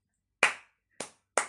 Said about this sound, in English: Their little clap session.